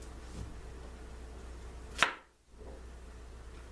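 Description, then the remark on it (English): One sharp knife chop through a potato onto a cutting board, a single crisp thwack over a steady low hiss, followed by a brief moment of quiet, as potatoes are cut up for lemon pepper fried diced potatoes. No one speaks. “So first of all, we're gonna cut. Some up, get them cut up real good.”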